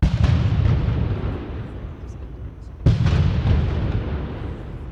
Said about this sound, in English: When he paused on the granite steps of the State House, Baker was given a 19-cannon gun salute that echoed all across Boston Common.